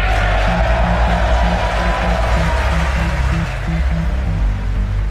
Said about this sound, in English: That's President Donald Trump to a huge round of applause at the State of the Union address.